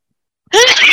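sneeze

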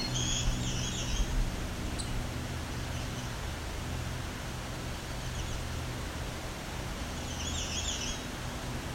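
songbird singing

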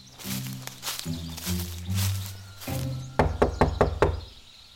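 knocking on a door

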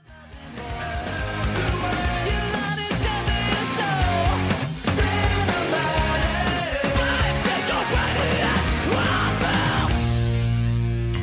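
screamed vocals

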